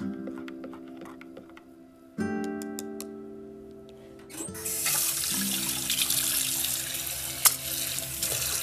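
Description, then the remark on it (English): Nescafe coffee pours steadily into a favorite coffee mug from Nodoso, starting faint with a few clinks and swelling into a loud, hissing stream of splashing liquid near the end. “As I'm sitting here pouring my cup of coffee in my favorite coffee mug from Nodoso, XOXO, that matches my necklace.”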